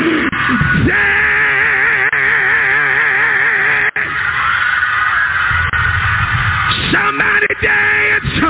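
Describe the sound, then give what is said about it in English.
A large audience yells and screams all at once, a loud, sustained wall of overlapping voices with wavering shrieks rising above the roar for several seconds. “Now scream.”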